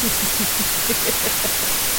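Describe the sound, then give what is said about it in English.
A steady wash of white-noise static hisses continuously for the whole stretch, loud and even, with faint muffled murmurs barely poking through underneath. “You idiot, stop listening to white noise.”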